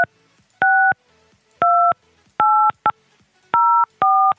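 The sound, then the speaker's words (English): Six touch-tone keypad beeps enter an access code into a phone conference-call line. Each is a clear, steady dual-tone, loud, pressed at an uneven pace with short silent pauses between, and no voices. “Please enter your access code followed by the pound or hash sign.”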